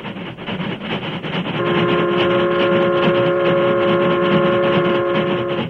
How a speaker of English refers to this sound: The Union Pacific, pride of the West, was roaring across the open stretches where vast ranches separated the small crossroads communities.